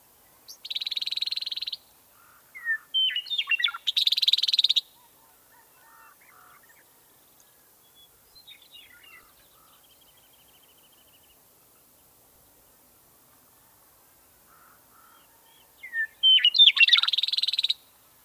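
Outdoor birdsong in three loud bursts: a male icterid's liquid song notes overlapped by a harsh, buzzy female rattle as the pair sing a duet, separated by a long quiet stretch with faint calls.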